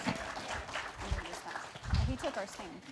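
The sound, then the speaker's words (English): A crowd applauds to welcome two volunteers to the stage. It is a steady, dense patter of many hands clapping, with voices and a few whoops mixed in underneath throughout the three seconds. “Let's clap.”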